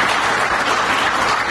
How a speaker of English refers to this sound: All right, give yourself a round of applause, scumbags.